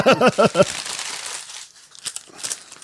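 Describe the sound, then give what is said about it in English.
Loose wrapping paper crinkles and crumples steadily, with a few sharper rustles toward the end. A brief burst of voice is heard at the very start. “You take all the loose wrapping paper you can find and use it.”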